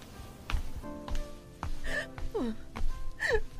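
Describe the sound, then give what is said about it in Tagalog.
A mother sobs in a bedroom at home, with sharp catching breaths and hiccuping gasps broken by short, high whimpering cries that slide downward, repeating unevenly over a few seconds with no talking. “Umiiyak ka ba?”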